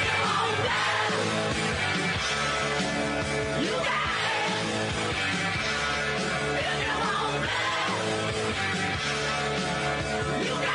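A loud hard rock song plays continuously, with dense distorted guitars, driving drums and a shouted, raspy lead vocal filling the whole stretch, no talking over it.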